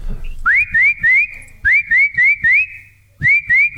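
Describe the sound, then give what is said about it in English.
A person whistles an imitation of a tufted titmouse call: bright, rising two-part notes repeated in quick, even phrases of three or four, with short pauses between phrases. “That's the tufted titmouse.”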